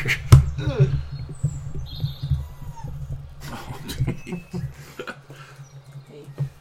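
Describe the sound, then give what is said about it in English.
A puppy lets out a series of short, high squeaks and chirpy whimpers, scattered irregularly over a low steady hum in the background. “He's a good puppy.”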